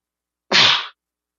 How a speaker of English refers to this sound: What, is that you sneezing? Yeah, that was me sneezing.